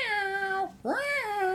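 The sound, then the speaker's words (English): A cat meows twice for attention, loud and drawn out, with a brief gap between; the second meow swoops upward and then trails off. No one speaks. “And it'd be like, Ecto, and then go run outside, and it's just the cat sitting there.”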